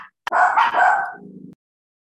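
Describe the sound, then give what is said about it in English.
A dog barks loudly, two quick back-to-back barks that trail off into a lower, growly rumble before stopping abruptly. No one speaks. “Sorry, before everyone's dog starts freaking out.”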